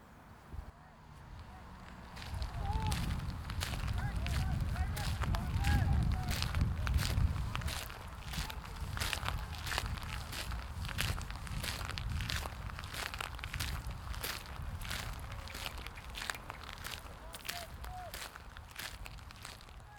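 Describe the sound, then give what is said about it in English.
Steady footsteps walking outdoors in Belfast City Cemetery, Belfast, toward the front of the cemetery beside the road, each step a crisp crunch repeating at an even pace for the whole stretch, with a low rumbling background of road traffic that swells early on and then eases. “I've now walked down towards the front of Belfast City Cemetery.”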